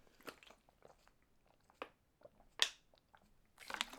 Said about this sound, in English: Excuse me while I take a sip of some Ishka. I can't be arsed editing or pausing and editing this out, so you're just going to have to bear with me while I drink a bit of Ishka.